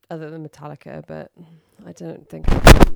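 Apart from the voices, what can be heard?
sneeze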